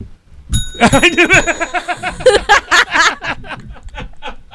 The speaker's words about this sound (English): I love this bell. We gotta keep this. I know. We gotta keep this on the show. This is the last time you'll see that bell in this studio.